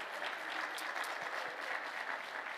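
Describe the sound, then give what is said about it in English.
A church audience claps hands in thanks to God in a steady, dense wash of applause that holds at an even level for the whole stretch, with no voices standing out above it. “Why don't we clap our hands and thank him for it tonight?”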